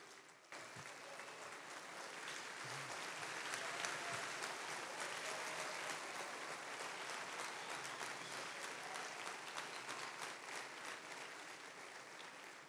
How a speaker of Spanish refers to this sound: Sé que no me han agarrado la onda por esos aménes y esos aplausos tan pobres.